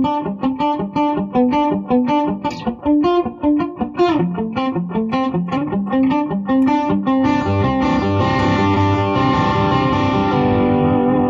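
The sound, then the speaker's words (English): A muted electric guitar picks a quick, even run of short, damped notes, then settles into a sustained, fuller ringing chord with a slightly distorted edge. No one speaks. “And if you want it really muted, you can move further towards the headstock.”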